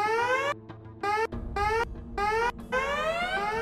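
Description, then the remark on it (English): A security alarm blares in repeated rising electronic whoops, four bright harmonic bursts separated by short gaps, over a steady low rumble, as red alarm light washes over bright white walls. “the bright white walls are painted with red light as security alarms work and shuts off.”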